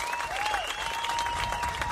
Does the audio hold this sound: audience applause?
yes